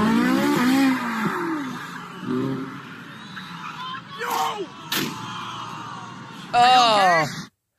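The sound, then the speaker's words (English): A Ferrari 458 sports car owned by a Houston-based law firm revs hard in rising, whining sweeps at a car show, then two sharp crashing bangs as it jumps a curb and crashes into an embankment, and the engine screams loudly again at the end, with voices audible in the background. “Driver of a Ferrari 458 is what you have, Cody.”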